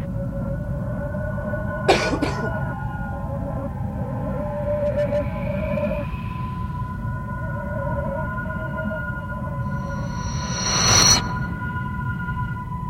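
coughing

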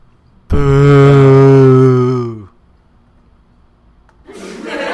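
crowd booing sound effect

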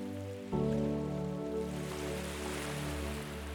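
gentle ocean waves

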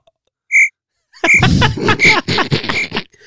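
crickets chirping sound effect

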